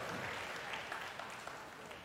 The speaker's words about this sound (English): Come on, applaud me. Come on. Feed the ego.